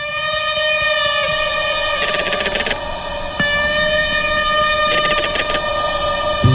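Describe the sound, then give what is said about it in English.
A crested caracara, a member of the falcon family, gives two short bursts of hollow, rapid rattling when disturbed, spaced a few seconds apart, over a steady, loud droning tone that runs through the whole recording. “Those are the hollow, rattling sounds the bird makes when disturbed.”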